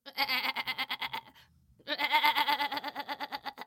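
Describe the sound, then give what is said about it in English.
A goat bleats in two long, quavering bursts with a short pause between them, the rapid pulsing warble loud. “There was Billy, who was the smallest goat of the three.”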